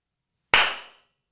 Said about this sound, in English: Maybe a good clap to like sync it up.